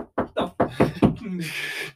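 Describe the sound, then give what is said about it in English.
Five firm knocks rap on a wall of an old house with squirrels living inside it, in a quick, steady rhythm, fairly loud, then a short murmured voice and a hissy rustle trail off. “The fuckers knock right back, bro.”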